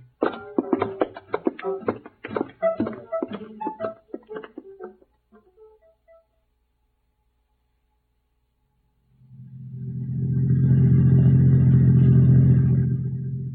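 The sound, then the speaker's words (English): After a few seconds of muffled voices and a pause, a sheriff's car engine rumbles to life, swelling into a loud, steady low roar that carries on to the end, as the car sets off after a maroon Pontiac with Oklahoma plates. “Get the car started.”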